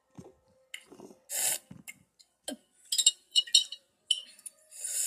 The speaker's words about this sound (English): Not you just slurping that pickle juice.